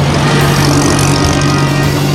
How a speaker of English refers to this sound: The open roads, the roaring Bentley, the quest ahead.